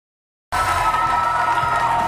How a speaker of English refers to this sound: Big crowd down here. Welcome to Overtime. I'm Scott Wapner. You just heard the bells.